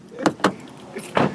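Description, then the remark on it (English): A locked car door's handle is pulled with a couple of sharp mechanical clicks, followed by the clunk of the door unlatching and swinging open, fairly loud. “Oh, let's see what happens when he pulls the handle. Oh, it fucking opens.”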